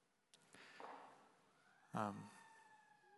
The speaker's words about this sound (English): Even just hearing a siren go by and just reminded of the brokenness and the pain in this world.